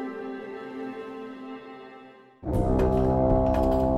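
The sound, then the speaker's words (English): Deep horns blow in long, sustained tones: a steady droning note first, then a sudden louder, brassier blast that swells in and holds, rich with low rumbling harmonics. “The sound of horns shook me back into consciousness. These weren't like the horns I'd heard before, but much deeper.”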